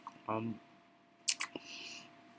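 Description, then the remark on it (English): Wet gum-chewing smacks from a speaker chewing gum: a quick cluster of three or four moist clicks, preceded by a brief murmured vocal sound. “Yeah, I'm chewing gum, so if you hear that smacking, yeah, please don't mind it.”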